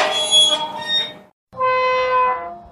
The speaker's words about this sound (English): Creaky gate. I don't even... I don't even know. Okay. The creaky gate is like, you know, when you watch the Munsters or the Dracula cartoon or something.